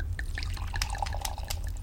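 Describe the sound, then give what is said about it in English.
Wine glugs and splashes as Radon pours it from a bottle for Lore, in a short run of uneven liquid bursts over a steady low rumble in the background. “Radon pours for Lore.”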